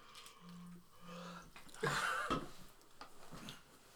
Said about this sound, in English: I yawned. It's a Michelob Ultra. Oh. I yawned. He was so bored of the beer that he yawned.